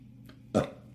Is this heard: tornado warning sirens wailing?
no